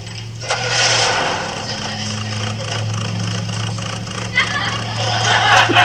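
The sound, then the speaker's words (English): An engine being worked on idles with a steady low droning hum, overlaid by a rough, uneven rattle and hiss that wavers in loudness throughout the few seconds it runs. “Is the engine you're working on? Yeah, I've got this puppy purring like a kitten.”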